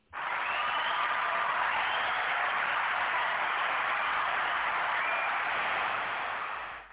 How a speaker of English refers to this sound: Hand claps of praise is going on a little long in here.